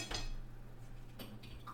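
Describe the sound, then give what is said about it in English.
A couple of sharp clinks and clatters of glassware and dishes as someone grabs a glass of water, one early and one near the end, with a faint ringing tone lingering over a steady low hum. “Sorry, I was grabbing water.”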